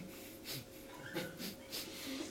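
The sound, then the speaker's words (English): A demonstration of shallow breathing: quick, shallow breaths in a steady rhythm, about five short airy puffs in a couple of seconds, fairly quiet, with no talking. “But here we're breathing like this.”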